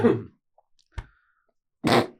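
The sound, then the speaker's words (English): A loud cough bursts out, followed by a short muffled sound and then a second harsh cough, as a person tries to hold back a worsening cough, with quiet gaps between and no talking. “I'm trying to hold back a cough. It kept just getting worse and worse.”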